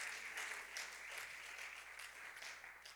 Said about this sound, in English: Somebody give the Lord a hand clap of praise across this building. Somebody let the Lord know we've come to give him honor and praise.